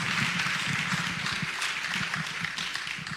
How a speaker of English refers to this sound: If you would do me a favor, put your hands together, give God praise as he comes to lead us this morning.